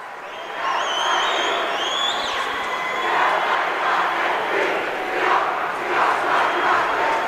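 A large crowd cheers and roars continuously as Neenah beats Brookfield Central 64-52 to win the Division I boys basketball state championship, with students cheering along. A dense wall of shouting voices rises in surges, and a few high-pitched whistles or shrieks cut through near the start.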